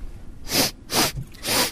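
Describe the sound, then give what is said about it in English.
Three sharp, breathy sniffs at a steady pace, each a short burst of airy hiss, as someone inhales the aroma of coffee grounds with no talking. “Okay, so have a little sniff there.”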